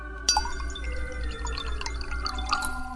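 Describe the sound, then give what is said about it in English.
A martini pours from a carafe into a glass in a bedroom, a steady trickle with a faint clink at the start and a gently rising ringing tone as the glass fills. “Here, I'll take off the top and pour you one.”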